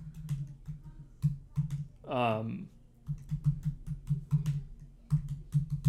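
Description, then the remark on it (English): Rapid, irregular clicking of a computer keyboard being typed on, continuing throughout over a low steady hum, with a brief voiced sound breaking in partway through. “I'm sorry, I'm typing something to you.”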